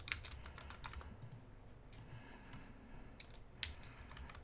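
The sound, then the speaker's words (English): Rapid computer keyboard typing, a flurry of light plastic key clicks with a brief pause midway before another burst, moderately quiet, with no voices, as someone types to look something up. “And I know that it was going to involve me typing, so I didn't want to...”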